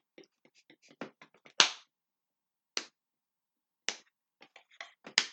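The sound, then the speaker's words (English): Slow clapping: a patter of soft, sharp hand claps, then a few loud isolated claps spaced about a second apart, ending in another quick uneven cluster of claps. “Dude, you can't just slow clap out of anywhere.”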